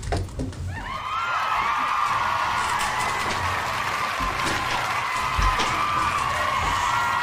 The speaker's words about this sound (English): So she didn't even hear it, but you got a big round of applause from a soundbite.